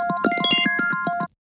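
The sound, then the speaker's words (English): A phone ringtone for an incoming call from an unknown caller plays a quick, busy electronic melody of sustained tones with rapid rhythmic pulses, fairly loud, then cuts off abruptly after about a second. “Sorry, I had a phone call.”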